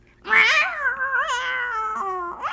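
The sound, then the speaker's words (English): A person does a drawn-out, wavering meow imitation, one long sustained cat-like cry that rises and bends in pitch before a short upturned squeak at the end, fairly loud. “And cats are just like, meow, meow, meow. Do your cat noise.”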